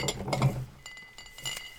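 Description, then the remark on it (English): Raspberry soda pours into a glass, with a few bright glassy clinks early on and a soft, fizzy hiss trailing off. No voices are heard. “Give me one of them Kleenex while this is pouring.”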